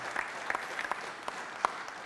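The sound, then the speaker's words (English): A crowd applauds steadily for a visiting missionary group, many hands clapping in a dense, continuous wash with a few sharper claps standing out, fairly quiet overall and with no voices. “Let's give these guys an awesome round of applause.”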